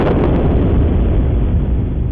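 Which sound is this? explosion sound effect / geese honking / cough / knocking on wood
explosion sound effect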